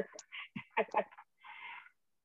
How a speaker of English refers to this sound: Sorry, I have a cat in my room.